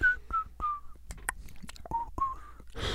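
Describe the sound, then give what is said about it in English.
A person whistles the Harlem Globetrotters theme in short, bright notes that slide and waver, with a pause mid-phrase before a second run of notes, ending in a burst of breathy noise. “I was whistling the Harlem Globetrotters to underscore that moment.”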